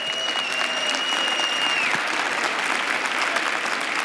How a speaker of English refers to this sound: Stand to your feet with me, please. Are you glad you came to church tonight? Amen. Amen. Would you give the Lord a great hand clap for his word?